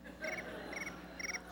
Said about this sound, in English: I hear a cricket. I wonder who's calling me.